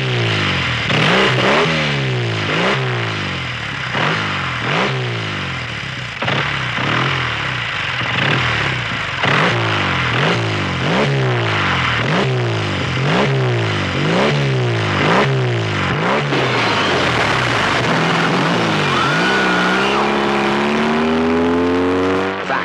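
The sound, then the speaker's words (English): A rusted 20-year-old 1956 model BSA motorcycle, long drained of gas and oil, roars loudly on a chill night in Cicero, revving up again and again in quick rising surges, then winds up in one long pull as it tears away. “Item, the police never did answer how a 20-year-old motorcycle, rusted and long since drained of gas and oil, had roared out into the chill Cicero night.”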